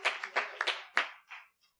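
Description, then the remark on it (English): An audience at a church service claps their hands to God in a short, uneven burst of overlapping claps, moderately loud, tapering off after about a second and a half with no one speaking. “Clap your hands once again to God as you are seated in the house of the Lord.”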